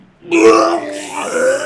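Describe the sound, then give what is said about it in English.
A voice imitates retching and vomiting with a loud, drawn-out guttural heave lasting over a second, croaky and belch-like, sliding slightly in pitch toward the end. “And it's a mix of vomit and fucking mucus slime.”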